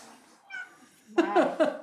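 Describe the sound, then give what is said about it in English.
A cat meows outside a closing robotic door, starting with a faint, thin whine and then letting out a louder, insistent string of meows near the end, with no one talking. “It's like, nope, can't come in, kitty, kitty. No coming in for you.”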